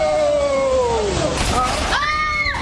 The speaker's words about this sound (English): The pipes have broken my ceiling and are flooding my house.